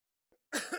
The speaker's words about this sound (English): Good time for me to cough and get a drink of water, which I left down there.